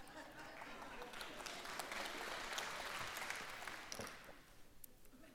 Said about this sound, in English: All right. You clap. I'll drink. You stop clapping.